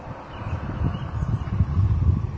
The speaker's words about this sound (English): Obviously, it's windy.